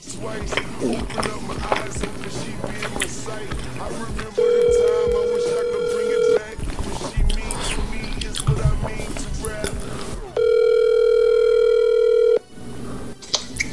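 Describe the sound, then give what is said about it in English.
A phone line rings twice, each ring a steady buzzing tone lasting about two seconds with a long gap between, over a busy, rustling background with muffled voices. “Let's give him a call.”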